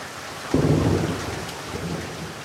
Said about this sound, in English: The rain is thick and there's half a rainbow over the damp beach.